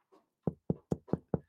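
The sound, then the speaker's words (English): Five sharp knocks on a door in a quick, steady rhythm, fairly loud, preceded by a faint softer sound. “I think someone's at the door.”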